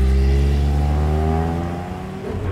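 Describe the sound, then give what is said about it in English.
A car engine revs loudly, its pitch climbing steadily as the vehicle pulls away and accelerates, carrying a family fleeing with a baby, with no voices over it. “She hands the baby through that window to her husband, who has a car waiting. And the Whiteheads go on the run.”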